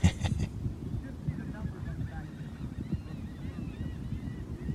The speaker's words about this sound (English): I think this might be a seagull breeding facility or something because they go fucking crazy. Hear them? Yeah. It's not like not real close to the water either. No, not really. Probably close to some dump or some bullshit.